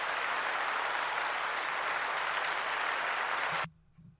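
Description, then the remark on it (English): A huge crowd in India applauds during President Trump's visit there, in a dense, steady roar of clapping and cheering that holds for over three seconds, then cuts off abruptly, leaving a faint low voice. “That's what it was like. Huge crowd.”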